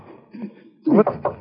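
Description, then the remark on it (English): A series of sharp, evenly spaced knocks on a door by someone at the door, about four raps in quick succession, fairly loud, after a quiet murmuring background. “The door, Jacques. There was someone at the door.”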